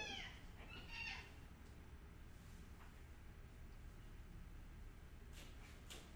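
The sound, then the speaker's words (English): A tiny female dwarf cat gives a few short, high chirping trills near the start, then goes quiet over a steady low rumble, with a couple of faint light clicks toward the end. “Do you hear my little dwarf chirping at you?”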